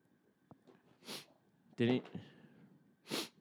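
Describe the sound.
Three short, breathy sniffs very close to a microphone as a person brings the mic up to take a whiff of it, spaced about a second apart. The middle one is louder and slightly voiced, almost snort-like, against a quiet background.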